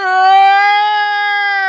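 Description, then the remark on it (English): A voice imitates a man's loud, drawn-out yawn in public, a steady brassy tone held for nearly two seconds with a rich, trumpet-like buzz before easing off slightly at the end. “Like the kind of yawn you do on a Saturday morning in your own fucking bed.”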